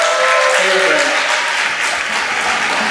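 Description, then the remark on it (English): An audience gives a round of applause for everybody on a panel, clapping steadily in a dense, loud wash of many hands with no gaps, holding at an even level for a few seconds. “Can we have a round of applause for everybody on the panel?”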